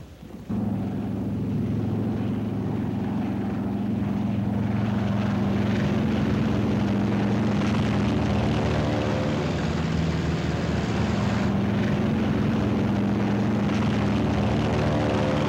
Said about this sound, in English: Trade wind is tearing down our flight deck. Our planes strain forward to rise into it. Our entire air group thunders out behind the group commander.